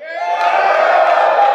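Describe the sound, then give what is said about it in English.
A crowd yells and cheers together in one loud, sustained roar of many voices, holding steady for over a second without a break, voting by yelling for a talk topic on how to get 100 million people to see your idea. “Who votes for how to get 100 million people to see your idea? Yell.”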